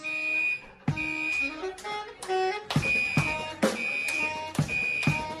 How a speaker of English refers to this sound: They were playing jazz in a restaurant when the kitchen set off the fire alarm. And I don't know why they didn't run out, but instead they incorporated the fire alarm into their song.